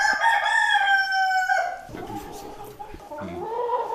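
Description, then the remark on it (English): A black Gaulois rooster crows loudly in one long, strained call, followed by softer clucking and murmuring from two black Gaulois hens sharing its pen at a breed conservatory. “Three beautiful black Gaulois, a rooster and two hens, are in a pen together.”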